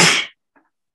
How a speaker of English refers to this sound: Sorry about that. No, you're good. Bless you. Bless the sneeze.